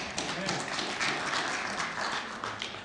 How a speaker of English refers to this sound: And you can clap for that if you want to. Amen.